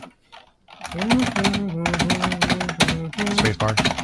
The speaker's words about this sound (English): Boy, you are violent on that space bar. It almost sounds like an old typewriter. No, that's the point. All of the springs underneath these keys are metal. The back plate for this keyboard is metal. It is pig iron.